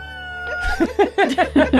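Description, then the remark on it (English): A rooster sound effect played from Sirenscape for an early-morning scene: the rooster crows in a run of harsh, bright syllables that rise and break over a second or so, above a steady low hum of sustained tones. “Got a rooster sound effect.”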